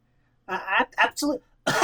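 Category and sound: human body sound, harsh cough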